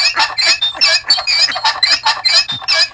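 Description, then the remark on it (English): A sound effect meant to suggest a couple in the motel room next door: steady, rhythmic bedspring-like squeaks, about three or four per second, fairly loud over a faint low hum, with no talking. “Okay, now that was Pogo Stick, and now here is Couple in the Motel Room Next Door.”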